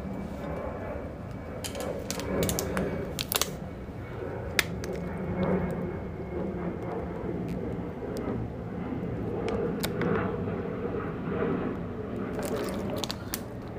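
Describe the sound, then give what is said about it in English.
Someone drinks water: a scatter of sharp clicks and small gulping, swallowing sounds over a steady low background hum, with no talking. “Let me drink some water.”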